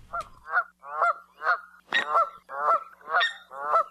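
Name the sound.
canada goose honking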